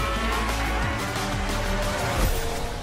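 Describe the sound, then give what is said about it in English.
Racing car engines in a video game trailer roar loudly and continuously, two cars vying for first place, their pitch rising and falling as they rev and shift, with a dense, noisy wash of motor sound throughout and no voices. “There's not much in it at the front, with the two cars constantly vying for first place.”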